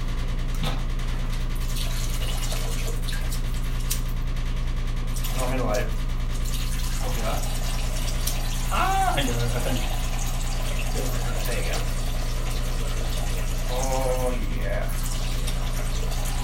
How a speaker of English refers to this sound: The sweet sound of piss.